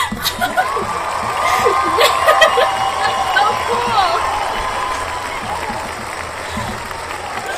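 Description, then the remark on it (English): A canned applause-and-cheering sound effect played from a soundboard runs throughout: a steady wash of crowd clapping with scattered whoops, holding an even loudness while someone briefly speaks over it. “Actually, wait, I had like a soundboard for this. Let me give you a round of applause.”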